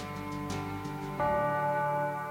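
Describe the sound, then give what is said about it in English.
A bell tolls, its deep ringing tone sustained, then struck again more loudly so a fresh, brighter peal rings out over the lingering hum, with no voices. “Don't ask who the bell tolls. It tolls for Blink.”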